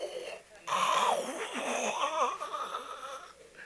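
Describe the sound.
A voice imitates loud snoring, drawing out a long, rattling, nasal snore with wavering pitch for about three seconds after a brief pause, with no words spoken.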